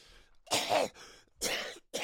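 Three harsh, forceful coughs come in quick succession, close and fairly loud, with short breathy pauses between them and no talking.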